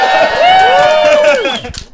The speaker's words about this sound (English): So can we get a cheer for Comrade Lightning Strike?